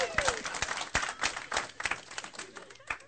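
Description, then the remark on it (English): An audience applauds a couple who have been married for 9.5 years, a steady crackle of many hands clapping at once for about three seconds, with a few sharper claps standing out and faint voices mixed in. “That's worth an applause.”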